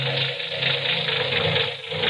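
A car engine with a sticking valve runs roughly and continuously at a filling station, a loud, steady mechanical clatter with an uneven, rattling quality and no voices over it.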